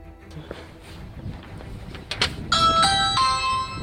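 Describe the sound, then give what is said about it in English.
A Ring video doorbell chime rings out loud: a short run of bright, stepped melodic tones following a few seconds of outdoor background noise and faint clicks. “Ooh, a ring doorbell.”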